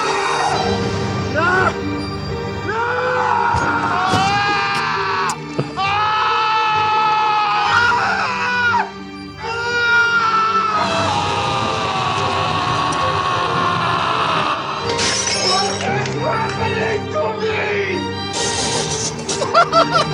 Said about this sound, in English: I didn't realize he screamed that much. What'd you say? I didn't realize he screamed that much in movies.